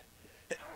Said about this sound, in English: Oh, shit. Bless you. Sorry. I had to sneeze. That was amazing. No, I tried holding it in. I tried to get through it. Couldn't.